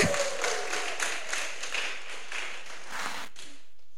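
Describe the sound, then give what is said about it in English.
Audience applause for two volunteers after a sponge and water demonstration, a dense patter of many hands clapping steadily for about three seconds before quickly fading out. “Give them a clap.”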